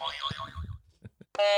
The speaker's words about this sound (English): test your buzzer for me.